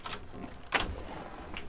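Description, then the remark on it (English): A door opens with a short scrape or click, one brief burst of noise against a quiet, faintly hissy background. No voices are heard. It is the door of Jairus' home being opened by Jesus in a narrated Bible story. “Opening the door to the home, Jesus found many people crying loudly.”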